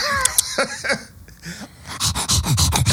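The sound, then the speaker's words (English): A person pants in an exaggerated, cartoonish way, like a wolf, with a fast run of loud, breathy huffs that speeds up toward the end. No words are spoken. “That's me panting at the gun show. That's … turning into a cartoon wolf.”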